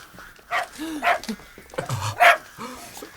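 A cocker spaniel named Oskar barks in a few quick, excited bursts, moderately loud, with short pauses between the yaps, while being walked through a city park in freezing cold and chasing sparrows.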